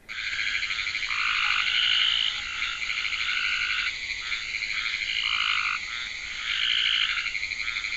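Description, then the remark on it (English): A dense chorus of frogs calling at night, overlapping trills and high pulsing peeps layered continuously with no gaps, loud and steady throughout, with no talking. “it's a symphony of frog calls”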